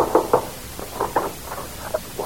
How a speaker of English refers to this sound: And one night after the performance, somebody knocked at our dressing room door.